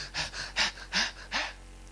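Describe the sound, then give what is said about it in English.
A voice imitates breathless panting: five quick, airy huffs in a steady rhythm, fairly loud, then trailing off into quiet. “It's when they get to the 5th floor or 10th floor, they start panting.”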